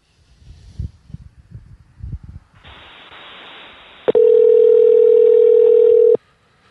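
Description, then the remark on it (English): A man in his truck places a phone call: low rustling and handling noise give way to a hiss of open line, then a loud, steady telephone tone sounds for about two seconds before cutting off abruptly. “I'm always stressed doing this phone stuff.”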